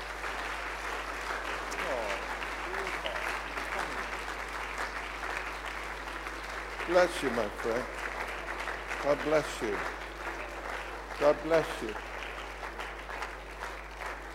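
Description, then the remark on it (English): A church audience applauds in a steady, dense wash of clapping that runs throughout, welcoming people who have come down to the front to be prayed with, while a man speaks briefly over it several times. “Let's give them a welcome, church, shall we?”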